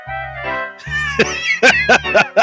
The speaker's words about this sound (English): Congratulations, everybody, for playing along our … sound bites tonight.